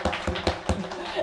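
Audience applause: a dense wash of clapping with a few sharper, evenly spaced claps standing out, fairly steady in loudness, with faint voices mixed in.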